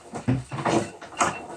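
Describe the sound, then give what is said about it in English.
A door with a wreath on it opens loudly, the wreath falling and scaring away a pet named Ruby, with a scraping, rattling rush of noise rising in a few uneven surges over a second and a half, with a brief squeak near the start. “That scared her away, the loud door.”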